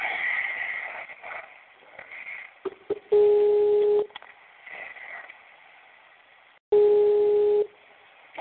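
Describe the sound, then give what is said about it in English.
A phone line rings out with two long, steady, low-pitched ring tones, each lasting about a second and separated by a pause of a few seconds, over soft background noise with no answer. “Now he doesn't want to pick up.”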